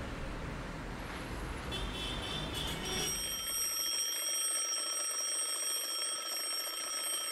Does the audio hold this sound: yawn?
no